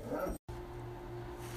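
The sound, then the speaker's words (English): Dogs give a short burst of barking, then after a brief pause a steady, drawn-out whimpering whine continues, fairly quiet, with no one talking. “It looks like the dogs are active, so I will call you back with the rest of the message.”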